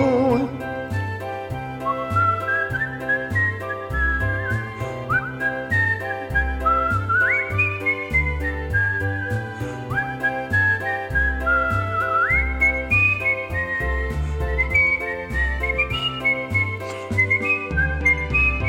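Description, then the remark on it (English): A bright, upbeat tune is whistled clearly and steadily over a bouncy instrumental backing, the melody rising and falling in quick, cheerful phrases throughout. “Whistle a tune, a happy tune, just whistle allegretto.”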